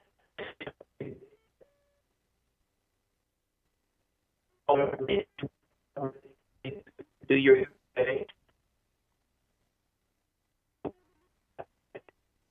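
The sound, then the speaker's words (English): A voice over a thin, band-limited phone line cuts in and out in choppy bursts separated by dead silence, then dwindles to a few faint blips as the call drops. “Yeah, we're going to have to call him back. That's the problem with cell phones.”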